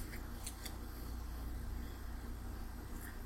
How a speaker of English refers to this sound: I pick up my fork and knife.